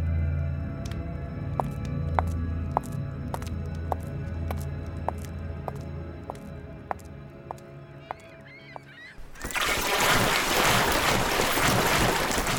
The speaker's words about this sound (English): A boat gets pulled to shore.